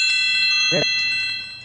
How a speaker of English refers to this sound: Our church bells? We are going to change that.